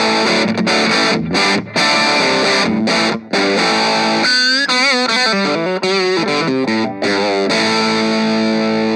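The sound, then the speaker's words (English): Crunchy overdriven electric guitar amp tone on the amp's dirty channel, turned up to about 12 o'clock with the main volume pushed, loud and sustained, with strummed chords and a short run of bending single notes in the middle, no voices over it. “Definitely kind of crunch sound, so we can back the volume off a bit on the main channel and turn the gain up.”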